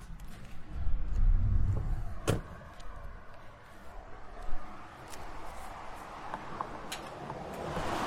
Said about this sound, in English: Now let's try to get out of the car without getting hit. I think I have my keys on me.